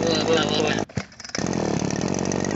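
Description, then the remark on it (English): A voice imitates a lawnmower engine revving, a loud, gritty, buzzing drone that drops out briefly with a short gulp, then roars back steadily to the end. “Hold on, I'm gonna try to use this lawnmower.”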